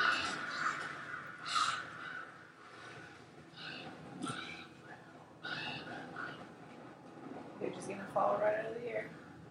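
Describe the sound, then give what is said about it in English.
Harsh, raspy bird caws ring out repeatedly in irregular bursts, several calls overlapping at moderate loudness, with a breathy, snorting undertone between them. “Killed all the birds.”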